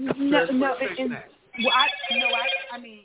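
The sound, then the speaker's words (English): A phone's Amber Alert emergency alarm, for a kidnapping out of Glen Heights near Dallas, blares midway through. It is a loud, steady, piercing multi-tone drone that holds for over a second, while a person talks before and beneath it. “There goes the alarm again.”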